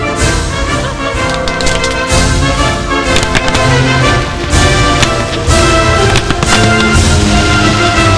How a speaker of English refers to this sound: Ooh, fireworks!